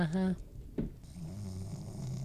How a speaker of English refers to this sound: That is not me snoring.